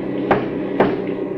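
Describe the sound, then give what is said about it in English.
Two sharp knocks on the back of a truck cab, about half a second apart, each a hard hollow thud standing out over a steady low engine rumble. “Three knocks on the back of the cab.”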